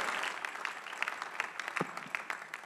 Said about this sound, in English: Please appreciate that with a clap.